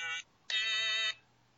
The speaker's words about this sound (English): I found my stylophone in the garage, and it's sitting on my desk, and now I'm fiddling with it. Stylophone? It's like this gimmicky little electrical contact synthesizer thing.